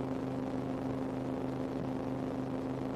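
A steady, low rumbling drone with a constant engine hum inside a moving car while driving home from work, continuous and even in loudness with no voices.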